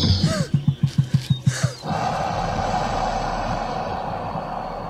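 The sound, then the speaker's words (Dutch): A reconstructed dinosaur call, an air puff with a little tone added rather than a roar: a quick rhythmic run of about eight low, breathy, tonal air puffs, fairly loud, then giving way to a steady rumbling background noise. “Het is eerder een luchtstoot die een beetje, waar een beetje klank aan toegevoegd is.”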